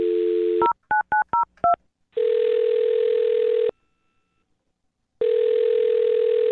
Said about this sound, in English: I'm going to dial his phone number right now and see if we can find out what the problem is, okay?